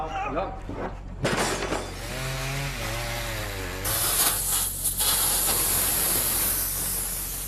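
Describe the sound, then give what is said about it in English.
Mill workers smashing the mill machines: loud crashes and breaking clatter, a wavering voice-like wail in the middle, then a harsh, sustained roaring grind with repeated heavy impacts. “And set the mill workers to break the machines.”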